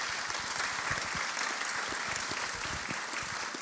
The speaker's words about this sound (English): So I think that we should celebrate that. So, well, why not just applaud? Feels like this is an applause moment.